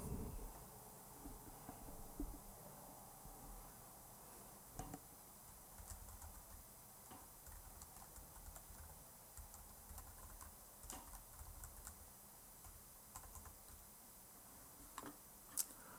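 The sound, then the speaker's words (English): Quiet, irregular typing on a computer keyboard with scattered soft key clicks over a low background hum, a few sharper taps standing out; no one speaks. “I'm typing.”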